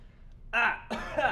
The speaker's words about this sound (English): Cough.